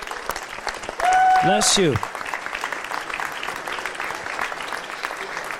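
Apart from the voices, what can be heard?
audience applause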